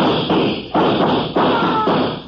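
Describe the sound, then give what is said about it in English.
Four heavy, booming gunshots fired into a heavy burning log go off in a steady rhythm, each hitting abruptly and trailing into a rough, crackling decay before the next. No voices are heard. “Shoot into it. Chip sparks off that heavy log that's burning.”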